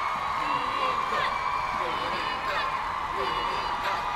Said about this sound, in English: Listen, Reading Bug, the crowd wants more.